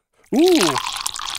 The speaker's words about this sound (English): Ooh. Oh, pour the bubbly. Oh, my gosh. It is an extravaganza. Look at that. It's a party.